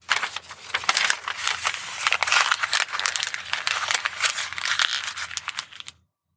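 Busy rustling and crinkling of papers and files being sorted through on the top shelf of a cupboard as someone searches for a file, a steady stream of crisp, dry crackles lasting about six seconds and then stopping. No one speaks.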